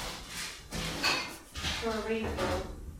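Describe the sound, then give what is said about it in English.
Someone takes champagne out of a fridge: a series of clattering knocks and rattles, with glassy clinks ringing out near the end as bottles bump together. “I'm just going to get the champagne out of the fridge.”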